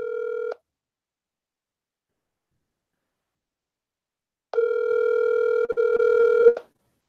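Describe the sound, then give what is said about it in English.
A phone line's ringback tone purrs on an outgoing call: the tail end of one ring, a long silent gap, then another steady two-second ring, clear and fairly loud with no talking. “Let me call Gus. I think he's coming back in. Phone's ringing, folks.”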